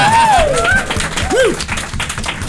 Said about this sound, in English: What they don't know is I actually secretly really like it, but don't tell them. Retract that applause.